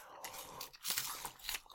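Crunching of a light, airy snack, with several crisp, crackly bites and chews over a couple of seconds, fairly quiet with no talking.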